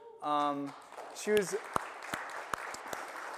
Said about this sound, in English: It's a good thing she's not here this morning, or that weak clap really would have hurt her feelings.